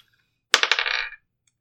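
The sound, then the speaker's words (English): Dice clatter across a hard table in one quick roll, a bright burst of rapid rattling taps lasting about half a second before settling into silence. “Why does everyone assume I can't read my dice and know the pluses?”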